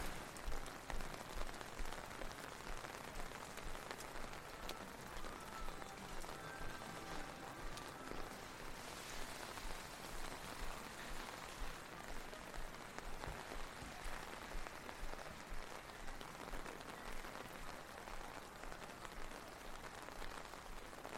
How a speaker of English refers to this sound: So we've nearly made it to the end of a wet, rainy Hitotsugi Street.